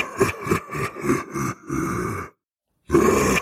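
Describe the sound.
A voice attempts an imitation of a scream: a run of short, rhythmic, grunting bursts gives way to a longer sustained strained cry, then a brief silence and another loud rough outburst.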